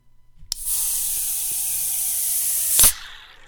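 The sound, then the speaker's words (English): A Sam Adams Nitro beer can cracks open with a sharp click, releasing a loud, steady high-pitched hiss that lasts over two seconds before ending in a brief louder burst and fading out. “Sam Adams Nitro, everyone. That was crazy. I thought it was going to break my headphones there.”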